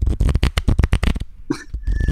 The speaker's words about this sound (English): Can you hear that? Yeah, please explain what you just did for audio listeners. It's a riffle. That's not right. It's like a riffle shuffle of cards.